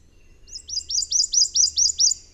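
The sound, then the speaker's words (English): A Prothonotary Warbler sings a loud, emphatic series of about eight identical high, rising 'sweet' notes in steady rhythm, with a faint low hum underneath. “The vibrant yellow Prothonotary Warbler got its name from the bright yellow robes worn by papal”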